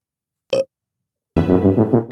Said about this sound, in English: Sound effects. Burp. Oh, here we go. It's not very loud, that one. Hold on. I'll give you another one.